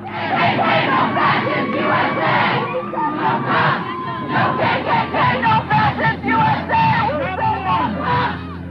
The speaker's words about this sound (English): You know what you're hearing right now? A group of protesters pulling down a Confederate monument in Durham, North Carolina, about 5 years ago.